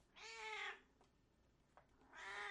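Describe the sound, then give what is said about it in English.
A female cat meows twice, a long drawn-out harmonic cry followed after a pause by a second, fairly loud, with faint clicks in between and no talking. “Podcat wanted to say hello to everybody. She hasn't been on the podcast for so long, she's getting angry. Meow.”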